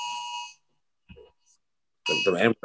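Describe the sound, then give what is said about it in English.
A harsh, buzzy electronic Amber Alert tone holds steady for about half a second, falls silent after a brief murmur, then blares again with a voice talking over it. “I think that alarm here was sending.”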